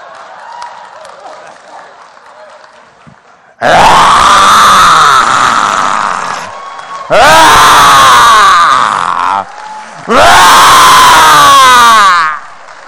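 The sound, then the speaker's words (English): A low murmur of voices gives way to three long, loud roars from a church audience asked to roar, each lasting two to three seconds with short pauses between, harsh and rising then falling in pitch. “Give us a roar.”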